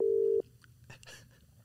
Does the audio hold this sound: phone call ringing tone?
yes